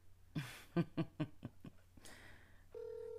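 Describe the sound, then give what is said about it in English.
A rapid run of short electronic beeps gives way to a steady, tinny ringing tone of an outgoing phone call to someone's mother, placed on speakerphone. “If she answered the phone, put on a speakerphone.”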